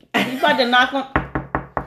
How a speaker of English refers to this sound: He's about to knock on the door right now.